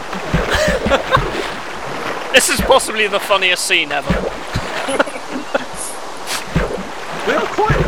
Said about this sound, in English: It's properly pissing it down.